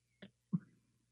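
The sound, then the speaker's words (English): A person briefly imitates a cat pawing at them, with two quick meow-like vocal bursts, a short chirp followed by a longer, falling mew, fairly quiet. “And I'm hoping like the cat's not close because the cat will just be lapping that up, you know, and just going to town, pawing me every once in a while going.”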